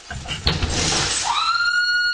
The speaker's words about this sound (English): A woman wielding a pickaxe smashes in windows. Behind the windows, a newborn baby is sleeping. That scream is from the infant's grandmother who's babysitting. It's a terrifying attack.